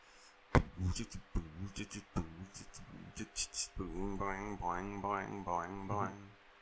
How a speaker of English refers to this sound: I don't know why I'm just humming and making noises now. Probably just because I'm fucking tired.